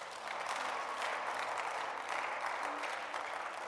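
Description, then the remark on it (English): An audience claps steadily in a dense, continuous crackle of many hands, holding a fairly even loudness for a few seconds with no voices standing out. “If I were you, I'll be clapping.”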